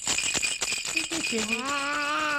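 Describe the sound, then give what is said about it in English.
A small toy rattle is shaken in a quick series of sharp clicks by parents playing with their 8-month-old son, then a high, drawn-out vocal coo rises over the last half. “Give a good shake.”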